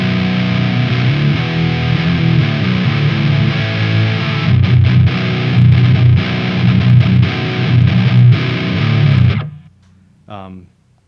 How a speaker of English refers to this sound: And then my main distortion that I kick on is this OCD clone here.